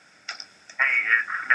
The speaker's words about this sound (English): And we got a phone call. Uh-oh. Oh, ring. Phone call.